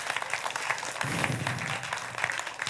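An audience claps their hands together in a steady, dense burst of applause lasting a few seconds, with a faint low murmur of voices underneath.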